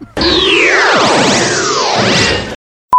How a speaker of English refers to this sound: All right, I guess we'll take a short break. We'll come right back. We'll see you in a little bit. Yeah. Whoosh.